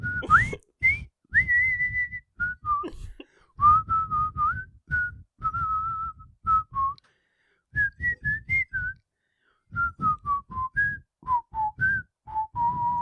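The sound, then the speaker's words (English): A person whistles the tune from a movie, a clear, bright melody of short and held notes with a few brief pauses, rising and falling in pitch over several phrases. “And you'll be whistling the tune as well, all the time.”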